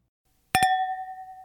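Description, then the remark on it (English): Two quick glassy clinks, followed by a clear, sustained ring that slowly fades. Wine glasses of Riesling touching in a toast, heard alone with no talking. “Speaking of that, should we grab our Riesling and give a toast here? Sure. Cheers.”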